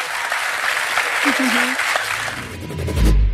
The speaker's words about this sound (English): So please give a big round of applause.